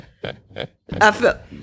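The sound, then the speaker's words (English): A guttural burp: two quick throaty bursts, then a longer, louder voiced belch that rumbles for about half a second before fading. “Excuse me, I burped.”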